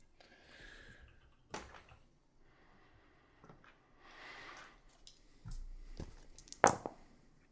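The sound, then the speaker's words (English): Dice rattle and clatter across a surface in several separate bursts of sharp clicks, fairly quiet, with one louder crisp knock near the end; no one speaks. “Roll the dice. All right, let me roll that them their dice.”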